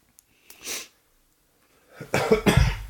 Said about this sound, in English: I just hit the mute button for you, by the way. I hit my own mute button when you started coughing. That's how finger on the trigger I am.